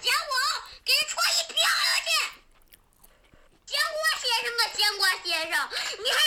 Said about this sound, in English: Why is he so mad at fruit? But look at the way he yell at the strawberries.